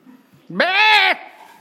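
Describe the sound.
A person's voice imitates a sheep with a single loud, drawn-out bleat of about half a second, rising sharply and then held steady with a nasal, wavering tone before cutting off.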